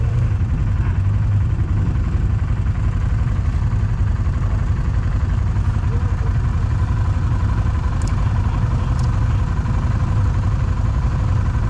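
A Yamaha side-by-side ATV engine idles before a river crossing: a steady, low rumble without pause, with a dense throb and some faint rattling on top; no voices break in.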